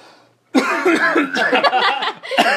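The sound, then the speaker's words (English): A loud burst of coughing starts abruptly after a brief quiet moment, continuing for about two seconds in rough, voiced hacks that blur into a laugh-like sputter. “a cough.”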